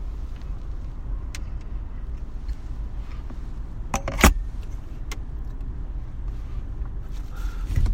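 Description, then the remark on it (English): A car engine drones with a steady low rumble throughout, broken by one sharp click about halfway through and a slight swell in loudness at the end, as the driver revs it after another driver cut around the car; no one speaks. “If you heard me revving my engines because some person decided to cut around me.”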